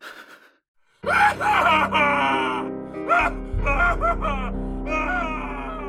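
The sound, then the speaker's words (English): A long, wailing scream with wavering, bending pitch rises and falls repeatedly, echoing through an empty building as a low droning rumble swells beneath it. “Your scream cuts through the empty building, where it dies alone.”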